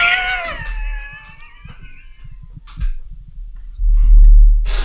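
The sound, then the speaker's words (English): A person mimics a cat with a drawn-out, wavering meow that slides downward in pitch, fairly loud, followed by rustling and low thumping noises with no talking. “Meow. Meow.”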